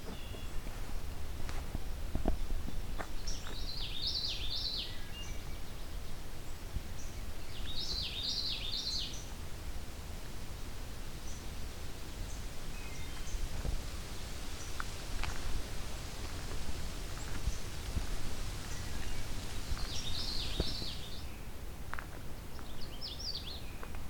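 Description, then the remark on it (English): A distant Canada warbler sings a few short, jumbled bursts of song, spaced several seconds apart, faint over a low outdoor rumble with occasional rustling. “There's a Canada warbler.”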